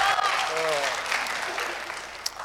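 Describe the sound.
Steady audience applause, a dense wash of many hands clapping at once, holding at an even loudness before thinning slightly toward the end, with a faint voice briefly audible underneath.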